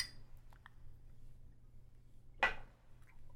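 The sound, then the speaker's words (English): A single bright clink of shot glasses knocking together in a toast, short and ringing, over a quiet background hum with no one speaking. “cheers. May your lap times be forever short.”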